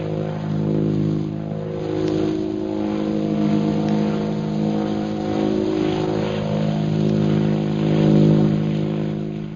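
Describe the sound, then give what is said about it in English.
A propeller airplane engine drones steadily overhead as the plane circles over the military airport at Calcutta, a loud, low, humming roar that swells and eases slightly. No voices are heard. “Several hours later, the plane carrying Shanghai Lil and Jungle Jim circles over the military airport at Calcutta.”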